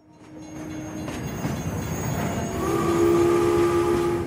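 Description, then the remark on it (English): A train rumbles into a station platform with a steady low roar that builds, then a sustained horn-like tone sounds over the rolling noise as it pulls in. No voices. “You step off a train in downtown Philadelphia.”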